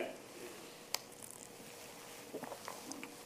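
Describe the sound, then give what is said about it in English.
A cap being screwed onto a plastic water bottle, quiet: one sharp click, a pause, then a run of small crinkly, scraping twists of plastic. “I think I put the top on.”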